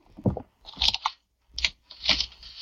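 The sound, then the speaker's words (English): Keys jingle and clatter in three or four short bursts, followed by the scrape and click of a key working in a door lock. No voices. “I have my keys.”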